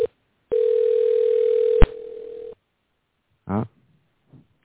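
A telephone ringback tone, during an outgoing call to a cell phone, plays as one steady two-second electronic burr, clicking and dropping in volume partway through. A pause follows, then a brief muffled voice-like sound.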